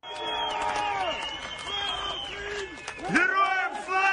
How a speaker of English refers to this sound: Hours later, the Ukrainian flag was being waved over Kherson's Freedom Square, to the sound of people shouting glory to the armed forces of Ukraine.